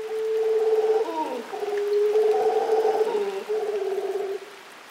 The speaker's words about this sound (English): We leave you this week in the rain in Costa Rica, in the Rincon de la Vieja National Park in the northwest. In the treetops, a troop of golden-mantled howling monkeys calls to each other across the cloud forest.